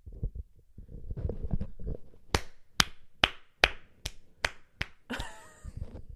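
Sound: hand clapping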